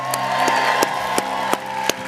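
A crowd cheers and shouts in a loud, continuous roar as a person comes out of the water, with sharp, evenly spaced claps punching through about six times in steady rhythm.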